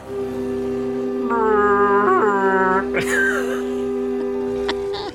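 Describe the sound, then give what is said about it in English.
A person vocally imitates the blast of a conch of teleportation being blown: a loud, sustained, wavering horn-like tone that swells and bends in pitch for several seconds, then breaks into a brief burst of breathy voice. “And he takes a big lung full of breath and blows into the conch. What does it sound like,”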